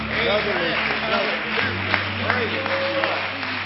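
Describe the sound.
An audience applauds in a hand clap of praise to the Lord, steady dense hand clapping throughout, mixed with scattered voices calling out over a low hum.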